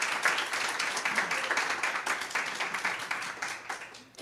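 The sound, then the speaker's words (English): A live audience at Design Within Reach's new Upper West Side studio applauds a guest, many hands clapping in a dense, crackling wash that stays fairly loud throughout and tapers slightly near the end, with no voices. “who as, yes, huge round of applause”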